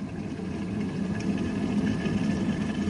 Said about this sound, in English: Put them in my cup and I'll set the kettle boiling.